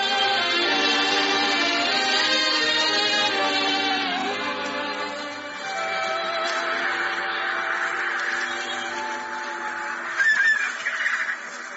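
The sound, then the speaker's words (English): A dense chorus of seagulls calling and squawking nonstop by red sandstone cliffs and surf in Devon, England, loud, with overlapping cries from many birds and a sharper burst of calls near the end. “I still remember the red sandstone cliffs and the surf and the seagulls scolding us for the intrusion.”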